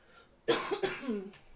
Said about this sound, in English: The literal cough.